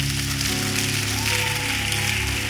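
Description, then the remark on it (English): A crowd claps for Jesus in a steady, dense wash of applause that holds at an even loudness throughout, with low sustained musical tones humming underneath. “Lift up your hand and clap for Jesus.”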